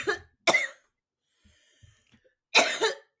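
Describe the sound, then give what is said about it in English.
A series of loud coughs after a bong hit: two sharp hacks in quick succession, a quiet pause with faint breathing, then another strong double cough. “basically recreates the iconic Two Girls, One Bong intro cough”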